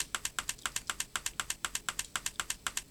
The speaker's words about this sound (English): Now, she stopped typing, but she hasn't sent the message quite yet. That's why we haven't heard anything. But she's going to start typing again now.